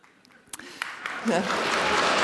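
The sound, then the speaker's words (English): Applause from an audience, greeting the announcement of fact-checking by Stuff's Whole Truth team at an on-stage event with leaders Judith Collins and Jacinda Ardern. It begins with a few scattered claps and quickly swells into sustained, dense clapping. “Fact-checking gets a round of applause, I like that.”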